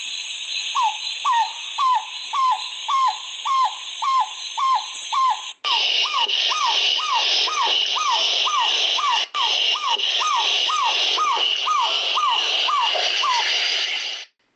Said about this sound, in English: Okay, hopefully you get the idea about what this little owl sounds like, and you can hear them a lot in the Kruger as well.